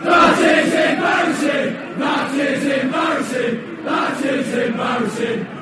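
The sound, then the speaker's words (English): A large crowd chants in unison, repeating a short rhythmic phrase roughly every two seconds, loud and sustained with many voices blending together. “People are kind of arguing about what this crowd is chanting.”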